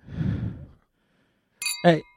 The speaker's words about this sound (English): Oh, where's the clink?